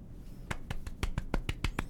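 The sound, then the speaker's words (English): A rapid series of eight sharp finger snaps, evenly spaced at roughly a quarter-second apart, crisp and bright, offered in place of applause with no voices present. “That's my round of applause for all you hype beasts.”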